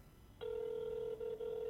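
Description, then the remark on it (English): A telephone line tone starts abruptly and holds a steady, mid-pitched electronic hum, broken by two very short gaps near the end. No voices are heard. “Come on, pick up, pick up.”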